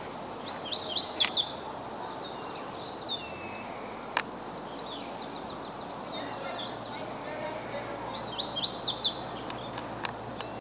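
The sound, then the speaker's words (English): An Audubon's warbler, a form of the yellow-rumped warbler, sings two short, bright trilled phrases several seconds apart, clear over a soft, steady outdoor hiss. “The song that we played is an Audubon's warbler, but the songs of the myrtle and the Audubon's are very similar.”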